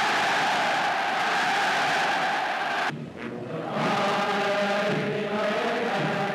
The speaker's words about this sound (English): Them just cheering him on. And that was a speech he gave where he was pretty much talking about what he's going to do.